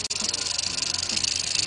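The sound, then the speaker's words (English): A rattlesnake's rattle buzzes in one steady, dry, hissing whir, loud, lasting under two seconds with no voices over it. “Old rattlesnake rattle.”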